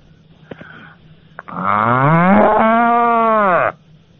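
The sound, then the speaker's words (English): A person doing an impression of a rampant cow gives one long, loud moo lasting about two seconds, rising then falling in pitch, after a couple of faint clicks, with no talking. “It's quite a good cow, but I wouldn't say rampant.”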